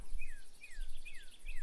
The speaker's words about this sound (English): I got birds. Birds and bugs are chirping. And chickens looking at me.